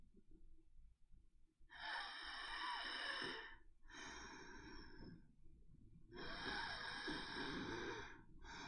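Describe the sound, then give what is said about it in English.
A voice imitates labored, rattling breathing: three long, harsh, noisy breaths with short pauses between, rough and gurgling like a death rattle, with no words spoken. “Why don't you imitate labored breathing for Asha?”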